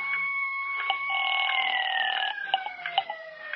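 An ambulance siren wails in a steady, high tone that shifts between pitches and then slides gradually downward, with a few faint clicks and knocks underneath and no voices.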